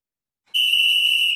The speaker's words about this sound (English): And that whistle means that it is time for the penalty kill.